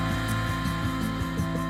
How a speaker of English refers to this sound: This machine that looks like a juice blender is used to turn truffles into a liquid called spore suspension. The technique was developed through trial and error.